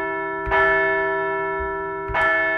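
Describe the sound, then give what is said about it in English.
A bell rings out twice, about a second and a half apart, each loud strike blooming into a long, sustained metallic hum that keeps ringing between hits. No voices are heard. “We'll look ahead to the rubber match on Wednesday, but first, we're going to ring the bell as the Phils look to win a second straight series.”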